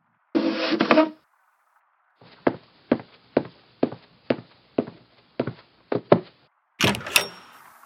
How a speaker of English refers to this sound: Open this door now. I want to see what you've got so far.